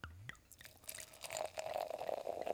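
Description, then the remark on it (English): A wheat wine ale (11.9% ABV, made with vanilla, milk sugar, granola, blackberry and boysenberry) is poured into a glass, a steady gurgling stream whose tone rises slightly as the glass fills, with no talking. “First beer of the lineup, the Chew on This from the brewery, is poured out now.”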